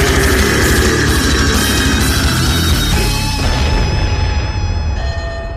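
A loud explosion sound effect: a dense, roaring blast with deep rumble and crackling debris that sustains for several seconds, then thins out into a faint high ringing tone. No one speaks.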